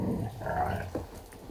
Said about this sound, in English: That sounded like Chewbacca, Zappa. Are you my little Chewbacca? I love when he chuckles. Especially when he goes, woof, woof. He sounds like he's laughing. He's chuckling.